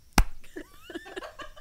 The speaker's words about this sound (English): You just high-fived yourself.